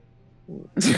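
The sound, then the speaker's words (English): A single loud sneeze: a short breathy intake rises into a sharp, hissing burst that cuts off abruptly, with nothing else around it and no talking. “You got to sneeze that shit out.”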